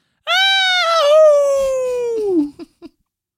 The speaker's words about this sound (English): I was reaching in to get the carton of cigarettes when I hear this sound. At first, it sounded like a woman screaming. Then it changed to a howling.